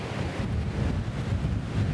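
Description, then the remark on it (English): Steady, blustery wind on a windy day buffets the microphone outdoors, a continuous low rumbling roar with uneven surges across the whole stretch and no voices. “I'll just pause while the wind's gusting.”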